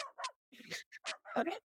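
A dog barks in a rapid, uneven string of about five short yips and woofs, fairly quiet, with no talking over it.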